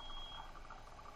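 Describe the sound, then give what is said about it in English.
Faint beeping from outside through an open window, like a vehicle's reversing alarm, sounding over a low engine rumble. No one speaks. “beeping, sorry. Oh, my window's open.”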